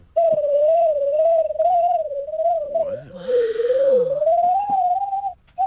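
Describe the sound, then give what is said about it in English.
A breathy, hollow hooting tone blown across the top of clasped hands, playing a bit of Flight of the Bumblebee, wavering up and down in a continuous melody, fairly loud, with a brief rougher flutter in the middle and no talking. “if I clasp my hands together and sort of make like a little sort of shake with it, I can blow across the top and hoot like an owl”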